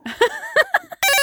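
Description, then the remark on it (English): A telephone ringing on an outgoing emergency call to 911: a few short, chirpy electronic tones, then a loud, steady ringing tone that starts abruptly and holds through the end, with no one speaking. “Go ahead and call. Okay. 911. Oh, it's ringing.”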